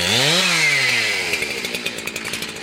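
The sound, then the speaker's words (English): A chainsaw, of the kind felling eucalyptus trees in Bolinas, California, revs up sharply, then winds down into a loud, choppy idle with rapid rhythmic pulses, without any voices. “Meanwhile, as scientists continue to monitor the trees, birds, and butterflies, and the county continues to audit the number of eucalyptus felled, the townspeople of Bolinas keep one eye on each other and an ear cocked for the sound of chainsaws.”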